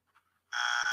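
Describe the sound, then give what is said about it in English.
After a brief near-silence, a loud, harsh buzzer, sounded as a "no" verdict, kicks in abruptly and holds steady to the end: one bright, raspy, sustained tone with no talking over it. “One more time, I'm gonna give a buzzer, man.”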